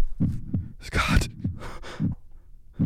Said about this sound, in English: I hate heartbeat sounds, dude.